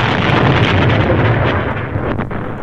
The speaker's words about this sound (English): No idea what happened, really, but from the outside we see a big explosion on the side of the building.